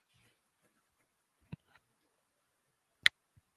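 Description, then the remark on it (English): A headset being moved, making a few sharp handling clicks and soft thumps: one dull knock, then a brighter, louder click a moment later, with near silence in between. “Yeah, you know not to move your headset.”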